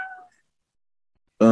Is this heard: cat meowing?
yes